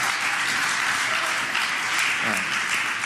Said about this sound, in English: Yeah, no, clap, please. It's great.